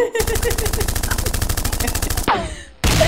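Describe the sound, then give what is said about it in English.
A gunshot sound effect: rapid automatic gunfire rattles loudly in a fast, steady burst for about two seconds, followed by a brief whoosh and then another harsh blast of shots. “Hold on, let me get for gunshots.”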